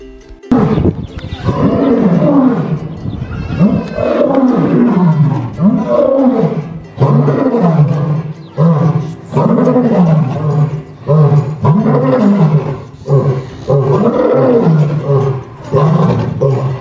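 A lion roars loudly, a long run of deep, rumbling roars following one after another with only brief pauses between them, and no voices.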